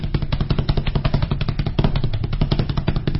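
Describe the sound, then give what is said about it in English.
Someone imitates horse hoof beats as a sound effect for the sound of chariots of many horses in a Bible passage: a rapid, steady clatter of loud percussive clicks in a galloping rhythm, continuing without pause for a few seconds, with no talking. “Think about what hoof beats sound like.”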